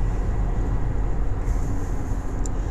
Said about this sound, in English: Oh, hold on. I'm driving. I'm coming to you from the car studio again. I'm always driving.